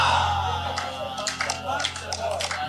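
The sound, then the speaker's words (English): An audience claps their hands for God in a loose, uneven patter that starts after a brief pause and continues over a steady low hum, with some voices mixed in. “Clap your hands for God.”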